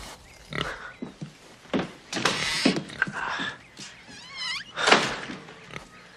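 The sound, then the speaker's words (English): A pig grunts and oinks at a hospital in a string of short, rough bursts, with a few higher squeals mixed in and brief pauses between them. “This pig's all I got to give.”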